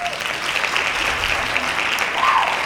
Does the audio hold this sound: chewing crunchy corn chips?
no